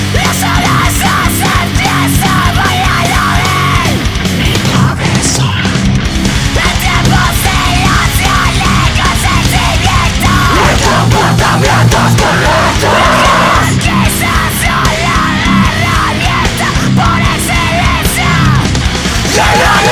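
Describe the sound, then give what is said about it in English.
A fast, heavy screamo metal track plays loud and dense throughout, with harsh screamed vocals over distorted guitars and pounding drums, barely letting up for the whole stretch. “… is a screamo band with power, violence, and metal influences. They're very fast, heavy, screaming goodness”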